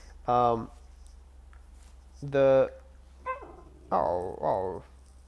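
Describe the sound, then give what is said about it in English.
A dog named Bonnie gives several short, loud vocal bursts: sharp barks followed by higher, whiny yelps, with brief pauses between them and no other sounds around. “just communicating with Bonnie the dog.”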